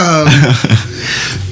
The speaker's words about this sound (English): excuse me. Spring has sprung up in my throat and chest, so I'm coughing a little bit, but I'm good.